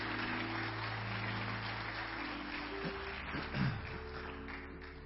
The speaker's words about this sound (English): Would you, again, honor her with your applause?